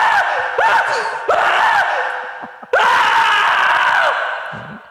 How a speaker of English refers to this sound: Now, we've got the classic, the Michael Wong scream. So here's that one.